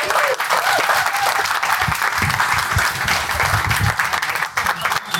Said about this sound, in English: Right, I can see everybody's gagging for a drink, so I'm going to give a massive, massive clap. Please show some love for this fantastic panel that have come together.